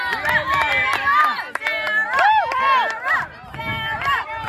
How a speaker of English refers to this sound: We are here at the 600, looking good. You can hear our guys cheering.